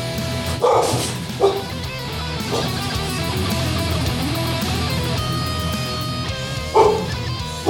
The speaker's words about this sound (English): I wonder how they got the dog on the song like that.